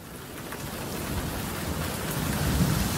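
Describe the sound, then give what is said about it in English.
Steady heavy rain hisses across the whole clip while a deep, rolling rumble of thunder builds and swells underneath, growing louder toward the end. No voices are present. “Consumed with their bleak fate, the disciples plead, "Who can calm the storm?”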